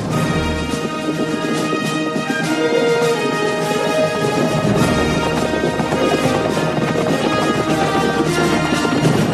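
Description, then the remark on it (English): Steady hoofbeats of four horses galloping side by side across the desert in a quick, rolling rhythm, set against loud, sweeping orchestral theme music that fills the whole stretch with no voices. “They have the four horses riding next to each other.”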